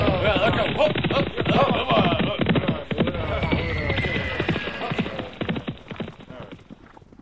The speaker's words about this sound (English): So the leader of the bandits looked around, and then he told his horse to run away. Yeah! And all the bandits, just as furiously as they came, thundered off on their horses.